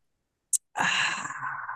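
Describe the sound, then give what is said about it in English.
A quick, sharp sip of a drink, then after a brief pause a long breathy exhale that slowly fades, with no talking. “Let me grab a little bit of my drink, take a nice little sip.”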